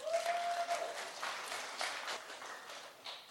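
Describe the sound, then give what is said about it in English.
An audience applauds with a dense, steady patter of many hands clapping at once, fading slightly toward the end. A brief faint tonal whistle rises over the clapping at the start. “Let's give them a clap.”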